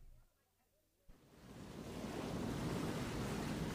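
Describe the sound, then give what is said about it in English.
After a brief hush with a faint voice, a roar of high ocean surf swells up and holds as a loud, steady wash of crashing waves and spray. “The waves are higher today.”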